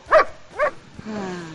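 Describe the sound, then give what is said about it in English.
A dog barks twice in quick succession, fairly loud, followed by a steady, thin tonal sound that carries on after the barks. “She's out there drinking beers, playing with her dog.”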